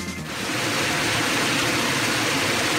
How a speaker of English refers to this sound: Plane. Propeller. It's an aeroplane